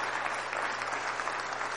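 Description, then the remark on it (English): Steady applause from a large audience, a dense wash of many hands clapping at a constant level with no pauses, given by young people for the grandparents standing up. “Young people, let's give grandparents a big applause.”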